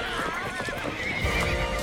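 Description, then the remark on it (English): A horse whinnies with wavering, high calls while hooves clip-clop steadily underneath, fairly loud across the short stretch, with a faint busy background. “Dang, horses can just stop like that?”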